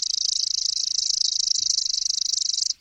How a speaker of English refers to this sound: I dialed up the pre-programmed call on my iPod, broadcast the song through an external speaker, and bada-bing, there it was, a male chipping sparrow, hormones pumping, singing madly from the branch in front of me.